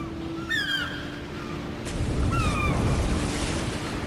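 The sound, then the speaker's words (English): Ocean surf swells into a giant, broad, rushing wave wash about halfway through and keeps roaring, while sharp high bird cries call out twice over a low steady hum. “Before you could reach a decision, a giant wave washed over you and carried you out into the ocean.”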